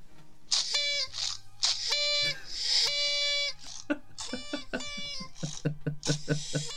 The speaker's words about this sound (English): It wouldn't be a party without a party horn. I feel about 30% more festive than I did.